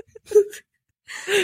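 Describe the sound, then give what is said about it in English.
Two breathy exhalations right up against the microphone, each a rush of airy hiss with a faint voiced whimper-like tone, separated by a brief silence. “I can hear you breathing.”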